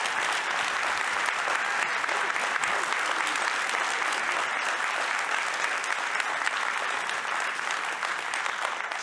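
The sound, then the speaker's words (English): A church audience applauds its worship team warmly, steady dense clapping that holds at an even loud level for the whole stretch without pause or any voices on top. “And I was wondering if you would give them a warm round of applause.”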